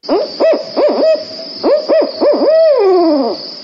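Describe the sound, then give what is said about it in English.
A person's voice mimics a barred owl's hooting call: two quick groups of rising-and-falling hoots, then a final long, sliding, descending hoot, loud with no other talking. “That's pretty close to the Holy bard owl.”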